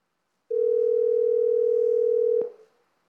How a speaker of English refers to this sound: This watch is connected over the AT&T cellular network. This is our new Explorer face. And I'm going to tap on the phone app, and I'm going to call